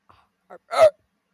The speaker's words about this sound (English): That was like an inward burp. That's what it felt like. I make weird sounds. Like, I make weird bodily sounds.